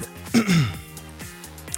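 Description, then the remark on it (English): A short, husky throat-clearing burst from a voice, one rough rasp lasting under a second, followed by quiet breathy murmuring. “Let me clear my throat.”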